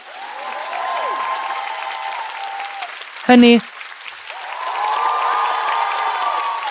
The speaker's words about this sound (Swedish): Om du hör det här så vill jag snälla klappa. För jag ska klappa.